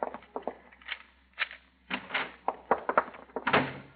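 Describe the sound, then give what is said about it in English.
A door is opened hurriedly with a run of wooden clunks, rattles and knocks over several seconds, getting busier toward the end, with no voices. “Get the door open fast.”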